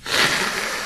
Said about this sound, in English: I'll blow my nose.